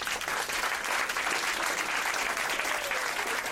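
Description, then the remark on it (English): A large crowd applauds steadily, a dense wash of many hands clapping at once that stays loud and even from start to finish with no voices standing out. “I mean, I'm clapping with you. That was damn near everybody.”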